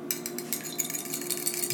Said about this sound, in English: Also, I have in a bowl some egg that I'm mixing here together now with water to make an egg wash.